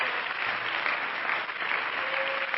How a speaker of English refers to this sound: Why don't you put your Bibles down now and let's just give the Lord a hand clap of praise and shout unto God for the promises that are in the Word of the Lord.